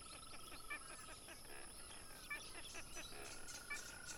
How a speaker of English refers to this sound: We sat in silence for a time, listening to the chorus of crickets, frogs, and other insects that filled the air.